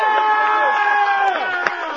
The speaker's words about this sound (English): By the way, while we're here, everybody who is in here, how about a big round of applause for the great people here at the Premier Adult Factory? Yeah!